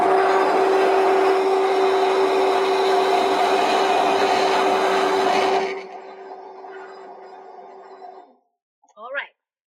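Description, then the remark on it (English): An immersion blender whirs loudly and steadily with a droning motor hum for several seconds while frothing matcha with milk, then switches off and fades out, followed by a short faint sound near the end. “So, got my messy immersion blender here for you.”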